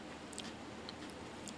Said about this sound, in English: This is the chocolate peanut butter pie Oreo. Okay, I'm chewing.